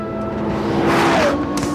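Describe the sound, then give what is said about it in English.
A 5.7-litre V10 engine, originally designed for racing, in a road-going sports car roars loudly, its deep harmonic growl rising in pitch as it revs, with a brief whine near the end and no voices. “It's a 5.7 litre V10. Originally designed for racing, but now it's in a road car and the effect is absolutely mind-blowing.”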